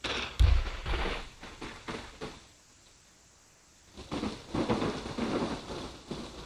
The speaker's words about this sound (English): Of course, my pop and noise gate is kind of throwing it off. Here, I turned it up a little. Here we go. That's my thunderstorm.